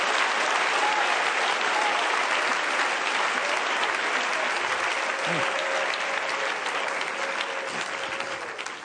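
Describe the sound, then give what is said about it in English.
A crowd gives the Lord a hand clap, clapping steadily and loudly for several seconds, a dense wash of many hands with no clear rhythm, tapering slightly at the end, with faint voices underneath. “Oh, give the Lord a hand clap tonight.”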